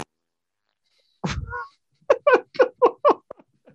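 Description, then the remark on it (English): A wet, squelchy fart noise made by squeezing Flarp noise putty by hand, followed by a rapid run of five short, squeaky bursts, loud with brief silence between. “We were sitting here making farts with this thing for like an hour and just dying laughing.”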